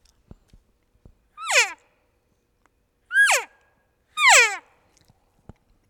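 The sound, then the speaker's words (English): Three imitated plain, everyday elk cow calls, each a short, high, nasal mew that slides downward in pitch, spaced about a second apart, with faint clicks and taps in the quiet gaps. “Just plain old cow call like this.”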